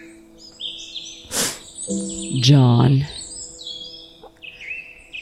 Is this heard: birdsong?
yes